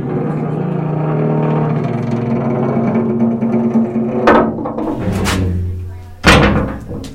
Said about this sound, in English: Then they took us all into the cellar, which I will admit is a much different experience at night than it is during the day. Once we had taken our seats, they closed the giant metal doors.